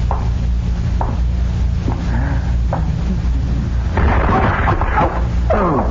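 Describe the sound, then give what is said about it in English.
A few dull knocks over a heavy low rumble, then a loud, broad crash as a flower pot falls and shatters on a stage, knocking over a man crossing it, with a brief clattering tail. “I started to cross the stage and something knocked me over.”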